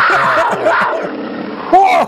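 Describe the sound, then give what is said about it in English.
A bobcat roar sound effect: a harsh, snarling growl lasting about two seconds, loud throughout, with a wavering pitch and a sharper, rising snarl at the very end. “Get the Bobcat sound effect ready, though, because the Bobcat's going to be in the house.”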